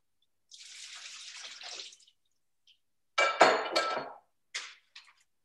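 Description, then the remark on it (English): Water pours and splashes as yellow potatoes are drained from their water into a strainer, in two bursts, the second louder with a few hard clatters, followed by short dribbles. Fairly loud, with no talking. “And as you can see, I have all my yellow potatoes sitting in water, and I'm going to drain them out right now and put them into the strainer.”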